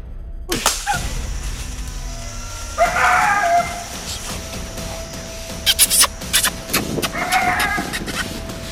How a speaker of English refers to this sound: Out here in Mountville, it's a real good morning. I bet these birds gobble probably close to 100 times.